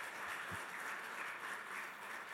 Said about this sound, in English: Somebody give Jesus a hand clap of praise and glory for what he's doing.